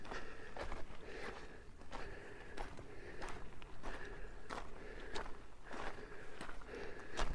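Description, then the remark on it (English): Steady footsteps crunch softly over sand in a park, damp from last night's rainfall, about two steps per second in an even walking rhythm, each step a muffled gritty press over a low constant background hum. “It's damp sand.”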